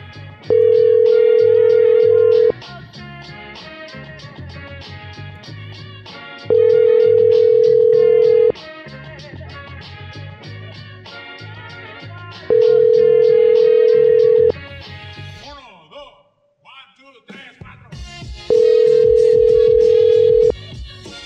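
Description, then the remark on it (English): A telephone line rings four times at steady intervals, each long electronic tone lasting about two seconds, over a continuous background of music. “Just a ringing number.”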